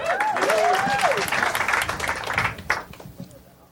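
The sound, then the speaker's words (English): A crowd breaks into loud, dense applause with cheering and a few whoops for comedian Dave Hill choosing the TV show Man versus Food, a steady wash of clapping that thins out and fades toward the end. “Dave Hill, Man versus Food, let him hear it.”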